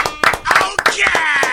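A loud burst of applause: many hands clapping in quick, uneven succession for a second and a half, with a steady wash of crowd noise underneath.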